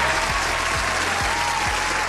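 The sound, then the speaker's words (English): A dense, steady burst of applause for the host after his sports report, loud and continuous for about two seconds, with a low rhythmic thump recurring roughly twice per second beneath the clapping. “One time for your boy, cause I ain't even applaud myself for the sports report.”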